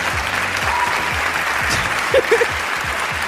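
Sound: cheering and applause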